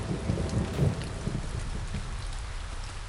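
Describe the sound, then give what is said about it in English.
Steady, heavy rain hisses across the whole stretch with a deep, blustery low rumble of wind underneath, loudest in the first second and then settling into an even downpour, after thunder has stopped. No voices. “On Snowgrand, there was no thunder anymore, only wind and rain.”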